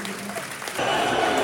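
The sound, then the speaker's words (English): A large stadium crowd at a football match applauds as player DeMarco is substituted off for Roman Essay, a dense wash of clapping that swells noticeably louder partway through and holds steady to the end, with no voices standing out. “Good applause.”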